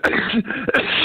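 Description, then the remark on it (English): A loud sneeze on live radio, a forceful burst followed by a second explosive sneeze a moment later, with no talking. “That's a sneeze and a half.”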